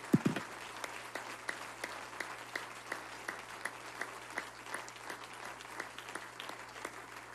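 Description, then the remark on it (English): A round of applause from a crowd honoring a woman who receives an award for outstanding faithfulness, service, and sacrifice, many hands clapping in a steady, dense patter that holds for several seconds at a moderate level, with no voices over it. “Would you please express another round of applause and appreciation”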